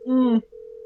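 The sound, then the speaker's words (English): A short voiced sound gives way to a steady, continuous phone ringing tone of an outgoing call dialed on a keypad, clear and moderately loud but cut off after a moment. “It's ringing. And that sounds like normal phone ringing.”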